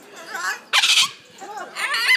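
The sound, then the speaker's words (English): Loud, harsh parrot calls burst out in a few raspy squawks, one especially sharp screech in the middle, dominating with no talking over them. “Is it, can you hear the parrots?”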